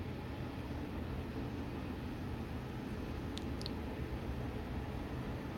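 A steady, heavy low rumble fills the whole stretch as a train rolls past a house, with a couple of faint brief squeaks partway through and no voices.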